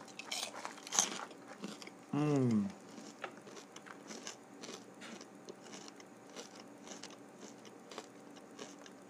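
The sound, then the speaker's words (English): Steady crunching of someone chewing crunchy Cracker Jack popcorn, crackly bites repeating throughout, with a brief murmured vocal sound partway through. “Popcorn.”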